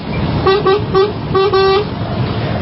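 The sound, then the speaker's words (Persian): A car horn honks in a quick rhythmic series of short beeps, the last held slightly longer, loud over a low rumble of road noise. “اول یه دونه بوق میزنم به افتخارت که عشقی.”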